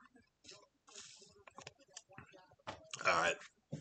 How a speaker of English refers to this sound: Let me sip on a little something, son. You know what I'm saying?